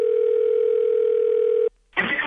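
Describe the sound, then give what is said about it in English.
A loud, steady telephone dial tone of an outgoing call hums continuously for under two seconds, then cuts off abruptly; after a brief silence a short burst of noisy crackle follows. “Let's get Andy on the phone.”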